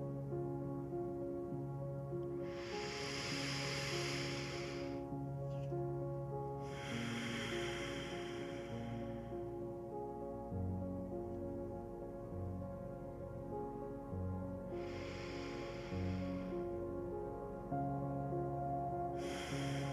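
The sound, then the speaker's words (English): Three slow, deep breaths, each a long airy rush in and out, spaced several seconds apart, clear over a soft, steady musical drone, with no talking. “Let's take three deep breaths together as we begin to relax our body and mind.”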